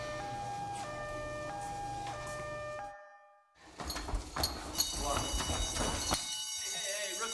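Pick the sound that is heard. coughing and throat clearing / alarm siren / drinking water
alarm siren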